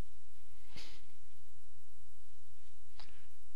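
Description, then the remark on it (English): Two brief, soft papery rustles of Bible pages turning as people look up 1 Thessalonians chapter 2, spaced a couple of seconds apart, fairly quiet against a low hum, with no one speaking. “Still hear a few pages turning.”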